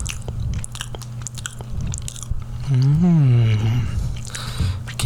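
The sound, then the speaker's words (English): Chewing of a soft bite of banana bread, with small wet clicks and smacks throughout and a brief hummed vocal sound in the middle, over a low steady background hum. “I taste banana and bread. It's really good. I'm gonna do a little more.”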